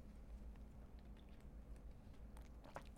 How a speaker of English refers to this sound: And someone will talk when I have a sip break. That would be huge because I'm going to take one right now.